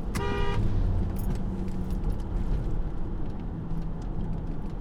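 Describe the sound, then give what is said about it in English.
A dump truck that veered toward the speaker rumbles past with a loud, steady low engine roar that fills the whole stretch, and a brief tonal horn-like toot sounds right at the start. No one speaks. “Sorry, this dump truck veered toward me.”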